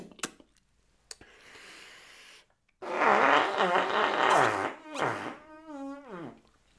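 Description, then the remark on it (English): A whoopee cushion lets out a long, loud, buzzy fart lasting about three seconds, wavering in pitch and ending in a squeaky, rising sputter after a few soft clicks. “Let's see if we can get a nice round-bottomed one.”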